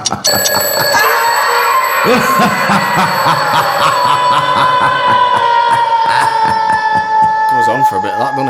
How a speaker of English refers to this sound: Can we play the Real World runtime jingle for me?